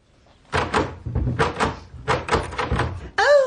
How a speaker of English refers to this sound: Not that door. It doesn't open. You want the next one to the left to get into the drawing room.